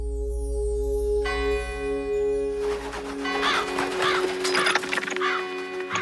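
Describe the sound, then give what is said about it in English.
A bell at a pizza delivery destination rings out with sustained, resonant tones that hang in the air, followed by a busier burst of clattering, chiming sound. No one speaks. “How do I tell them I'm here? Isn't there a bell or something?”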